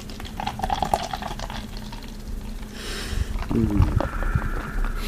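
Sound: liquid being poured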